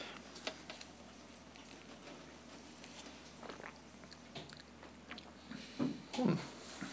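sipping beer

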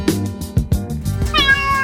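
cat meowing

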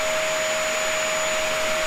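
vacuum cleaner running

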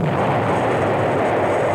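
explosion sound effect

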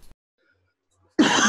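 dry cough

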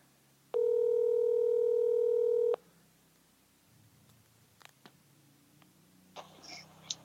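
phone call ringing tone

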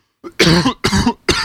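cough

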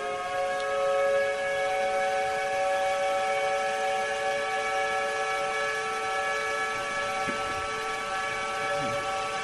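whistle blowing

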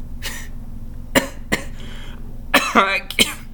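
cough into the microphone

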